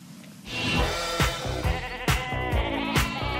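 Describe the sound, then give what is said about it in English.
Sheep bleat loudly, several wavering, overlapping cries running almost continuously, broken by a few sharp knocks or clatters, as the sheep are sheared for a Norwegian national knitting night TV broadcast. No one speaks. “Then there was a national knitting night, which started, of course, with shearing the sheep.”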